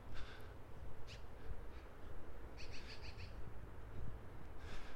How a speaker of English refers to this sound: A magpie is looking at me, squawking at me as I walk by its nest.